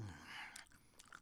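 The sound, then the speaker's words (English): Crisp ASMR chewing: a few sharp crunching bites with wet mouth sounds between them, with no one speaking. “It's warming up my mouth muscles, okay? This is what ASMR is.”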